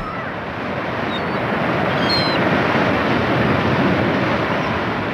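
A continuous, loud roar of ocean waves washing onto the shore, a dense hissing surge that holds steady throughout with no one speaking.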